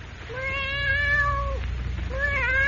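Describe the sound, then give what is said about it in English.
A black cat on Jimmy Olsen's bed, woken by a door opening, mews plaintively twice as it rises and stretches: a long drawn-out cry followed after a short pause by a second, shorter one, over a low steady background hum. “A cold black cat that, awakened by the opening of the door, rises and stretches, mewing plaintively, its green eyes glowing like emeralds.”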